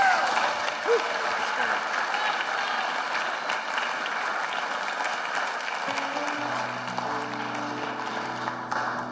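An audience gives a big round of applause for a speaker who has just described fireworks, a dense wash of clapping that fills the whole stretch, with sustained musical tones rising underneath toward the end.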